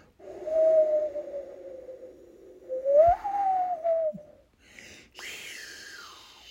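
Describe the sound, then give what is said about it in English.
A person mimics blowing wind with a long, wavering 'whooo' that rises and falls for about four seconds, then adds a breathy, hissing gust that sweeps downward. Fairly loud, no talking. “That's how the wind sounds in my brain.”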